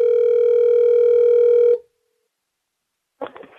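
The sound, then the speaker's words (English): A steady, buzzing telephone dial tone holds for almost two seconds and then cuts off. After a short silence, a few brief clicks and rattles follow, like a phone line being worked. “Good job on the dialing.”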